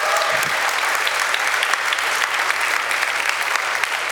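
A crowd claps steadily for about four seconds, a dense, even wash of many hands with no voices breaking through and no rise or fall in loudness.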